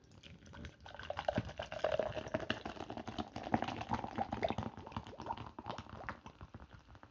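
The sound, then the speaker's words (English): Pomegranate kombucha from Health Aid Kombucha pours into a glass, a steady gurgling stream with crisp fizzy crackles and little splashes running for several seconds, with no talking. “I'm about to pour this bad boy in.”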